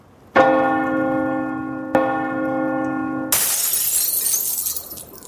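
A doorbell rings with two loud, ringing chime tones that sustain and overlap, then a sudden harsh crash like shattering glass cuts in and hisses on to the end.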